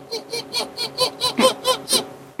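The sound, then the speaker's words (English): A voice imitates the call of a puffin chick that is worried but not hungry: about nine short, high, squeaky peeps in a quick, steady rhythm, fairly loud and heard alone. “Yeah, when a puffin, when the chick is worried, but not really hungry, it'll just sound.”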